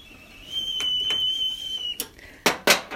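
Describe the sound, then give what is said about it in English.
A steady, high-pitched whistle from a little red steamer sounds for about a second and a half with a few soft taps underneath, then stops, followed by several sharp clattering knocks like dishes or a lid. “I love it when the whistle blows.”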